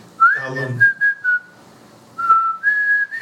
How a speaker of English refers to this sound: See, I can also whistle very good as well. So I can.